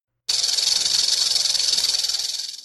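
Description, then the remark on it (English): A rattlesnake's tail buzzes a warning in a loud, steady, high-pitched rattle, a dense rapid pulsing that starts abruptly, holds for over two seconds, then fades slightly at the end. “It was coming from me. My tail. A rattlesnake's tail. It had sounded its grim warning without conscious thought.”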